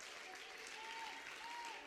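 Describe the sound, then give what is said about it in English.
A church audience standing and clapping their hands in praise, a dense, steady wash of applause that holds an even loudness throughout, with a faint sustained musical tone drifting underneath. “Stand to your feet, clap your hands, and give him some great praise.”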